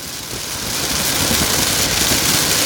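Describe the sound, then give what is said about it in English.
Heavy storm rain roars steadily, a dense hiss over a low rumble, drumming on a car roof heard from inside the car. It holds at a constant, loud level throughout with no voices. “And now I am in a tempest.”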